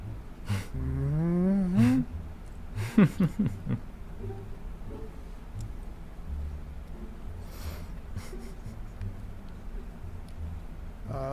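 A cow moos once in a long, wavering, rising call, followed by a shorter, broken lowing burst, then a quiet stretch of low background noise.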